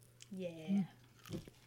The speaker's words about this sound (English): That way they know that's a crispy pepperoni and cheese you just bit into.